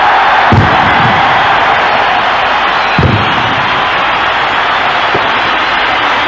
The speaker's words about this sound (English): Here's Ellery Henley about to lead Wigan out, and in contrast, wait for the reaction of the home fans as the Riversiders make their way onto their home pitch, Central Park. And listen to the crowd.